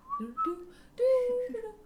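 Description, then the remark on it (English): Someone whistles a short melodic tune from a TV theme song, a few uneven, slightly breathy notes rising and falling over about two seconds, with no talking. “Yeah, I can't whistle.”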